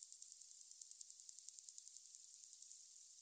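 A steady train of sharp, high-pitched whale echolocation clicks, used to orient themselves through sea ice and find prey, around eight per second, ticking evenly for nearly three seconds before fading into faint hiss. No voices.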